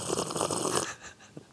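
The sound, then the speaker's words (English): A loud, airy slurp of ginger, hawthorn, licorice root and cinnamon tea with lily bulb, lasting under a second: a hissing draw of liquid and breath, followed by a faint swallow and a soft lip click. No one speaks. “Here's a little tea sipping. A little tea sip.”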